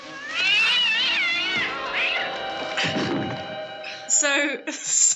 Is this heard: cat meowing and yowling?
yes